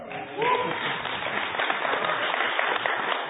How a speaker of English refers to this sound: Okay, just because he's prettier than me doesn't mean you have to applaud so much.